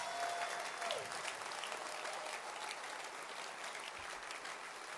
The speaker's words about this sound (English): This morning you are in God's house. Clap your hands.